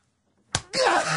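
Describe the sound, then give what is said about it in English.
A single sharp slap of a man's hand against his own bare chest, followed immediately by a loud, strained vocal outburst that carries to the end. “I have to slap myself? But in the chest, in your bare chest.”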